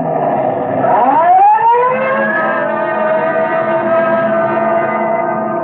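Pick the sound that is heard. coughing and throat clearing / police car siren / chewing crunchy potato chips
police car siren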